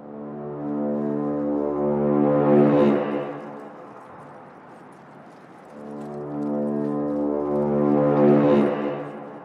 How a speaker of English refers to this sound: And then out of nowhere, you hear this massive, massive horn out in the distance.